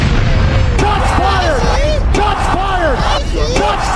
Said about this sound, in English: We got people in the background clapping.